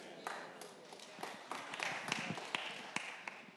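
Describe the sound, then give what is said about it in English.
Scattered clapping from an audience during a sermon, a steady patter of many hands with sharper individual claps popping out irregularly, continuing at moderate loudness for a few seconds. “Again, y'all ain't got to clap.”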